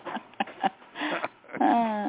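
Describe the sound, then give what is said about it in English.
A female dog makes a few short noises, then lets out a sustained, high-pitched whine that carries to the end. No one speaks. “The most dangerous dog in the world.”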